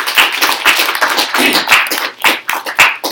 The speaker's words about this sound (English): And now we're all in one big happy family together. So really, how about a big round of applause for all of that? Yeah.